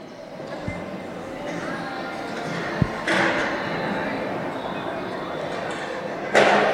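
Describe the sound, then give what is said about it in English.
An audience moving their chairs up toward the stage: scattered scrapes, knocks and thuds over a steady crowd murmur, with a couple of louder bumps and a broad scraping rush near the end. “Do I just move your chairs up? Let's just move up here.”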